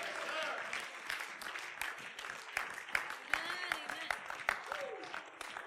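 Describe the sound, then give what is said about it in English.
An audience at a sermon claps steadily throughout, a dense wash of many hands with a few sharper claps standing out, while scattered voices and shouts rise over it. “Some of you are really clapping because you're ready to go home.”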